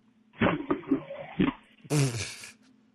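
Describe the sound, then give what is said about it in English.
A phone is tossed into a freezer, landing with a few loud clattering thumps and rattles, followed by a harsher, noisy scraping burst before things go quiet. “Hey, listen to what it sounds like when I throw my phone into the freezer.”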